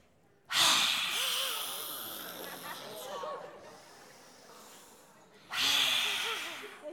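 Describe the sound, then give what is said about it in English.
Two loud, forceful breathy exhales, one at the start and another a few seconds later, each a harsh open-mouthed rush of air with a throaty edge, with quieter breathing and murmuring between them: the lion's breath exercise, done by partners into each other's faces. “We're going to do what we call the lion's breath into each other's faces.”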